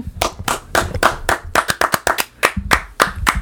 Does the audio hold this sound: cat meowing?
no